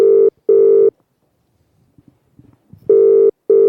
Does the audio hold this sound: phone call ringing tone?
yes